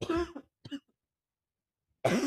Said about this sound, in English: Sorry, y'all. Oh my gosh, I had a cough. Hold on, let me take a sip.